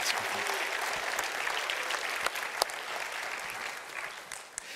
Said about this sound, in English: We're so thankful. Give them all a round of applause and thank them for sharing again.